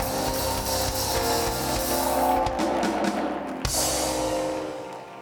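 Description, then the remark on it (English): A crowd erupts in loud, sustained clapping mixed with shouts and screams, a dense wall of applause that holds steady for several seconds before easing slightly at the end. “Somebody clap your hands and scream.”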